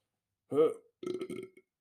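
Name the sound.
burp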